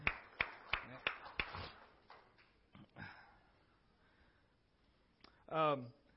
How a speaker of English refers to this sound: Well, let's receive our offerings just now. All right. We can clap about that too.